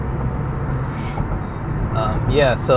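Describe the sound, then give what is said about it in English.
Steady low rumble of a car engine and road noise inside a moving vehicle, continuous throughout, with a voice speaking over it near the end. “Whoever's listening to it, if anyone's listening to this, hopefully they can hear me. So the car isn't too loud. Yeah, I'm driving right now.”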